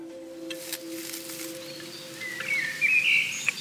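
Birds chirp and twitter in the background during a walk in the woods in Norway on a fine-weather day. A bright warbling phrase rises near the end over a steady low hum and soft ambient noise; no one speaks.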